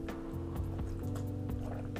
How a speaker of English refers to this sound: I had to take a sip of water there.